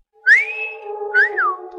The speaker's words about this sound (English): … whistle was for the girl.